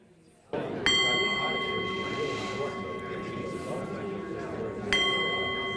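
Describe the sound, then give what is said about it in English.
A resonant bell is struck twice, about four seconds apart, each tone ringing on and sustaining clearly over a low murmur of people chatting during a group discussion. “Go ahead, I'll ring a bell in a minute.”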